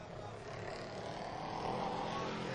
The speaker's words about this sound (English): And he's got that Ford Mustang all wound up as he comes around to pick up the green flag. Starting his first of two timed laps.